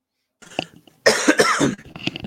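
A short fit of coughing: a small throat noise, then a harsh burst of several rough coughs and a final weaker one, with no talking.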